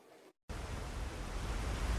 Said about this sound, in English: Masses of water gushing from the gaping hole in the destroyed Novokarkhovka Dam in Russian-controlled territory here in South Ukraine.